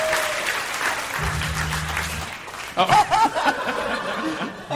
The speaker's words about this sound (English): He got excited. He loves the applause. He just started pressing all of them.